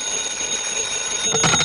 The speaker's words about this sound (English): Your number is ringing, Mr. Dollar.